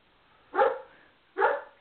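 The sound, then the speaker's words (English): A dog barks twice, two sharp, loud woofs spaced under a second apart, with no talking around them. “Sorry, that's my sister's dog barking.”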